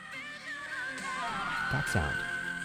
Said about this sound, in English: There's also a part where she whistle tones into the microphone, and it sends chills down my spine.